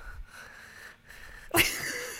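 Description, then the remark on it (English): Heavy, wheezy breathing, a soft whistling inhale followed by a sudden loud, forceful exhale near the end. “I'm breathing so loudly.”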